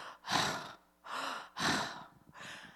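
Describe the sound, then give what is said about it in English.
Heavy, ragged breathing: four loud gasping breaths in and out, alternating in a labored rhythm with no talking, as of someone lying on the ground breathing hard after almost drowning. “I'm washed out, just laying on the ground, breathing hard because I almost drowned.”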